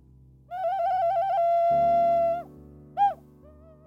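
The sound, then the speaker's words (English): An ocarina (clay whistle), kept low in pitch, plays a pure, breathy mid-pitched tune: a warbling trill that settles into a long held note, then a brief higher blip and a soft trailing tone, over a low steady hum. “to have an ocarina pause, which is where Acast digitally insert an advert and I play a clay whistle so you don't get any surprises.”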